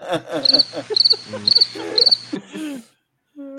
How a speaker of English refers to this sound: Where's that cricket sound effect, Ernie? Yeah, there you go.